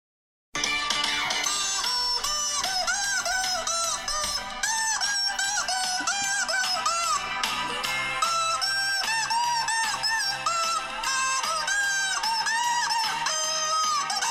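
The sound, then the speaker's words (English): A dense, loud chorus of chickens clucking and squawking all at once, a crowded flock with overlapping calls that never let up, continuous, with no one talking. “if you didn't know what the chickens sound like.”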